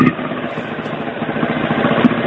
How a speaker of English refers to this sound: I'm outside a pub, and I've got a motorbike playing. A motorbike is braying in your ear.